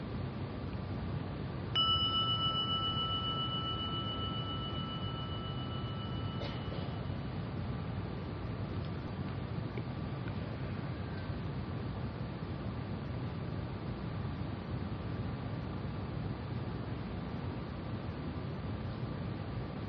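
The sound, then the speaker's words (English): A gong is struck once near the start, its bright metallic tones ringing and slowly fading over several seconds above a steady, noisy background rumble. No one speaks. “Let the sounding of the gong be an invitation to maybe let go just a little more of the armoring to arrive.”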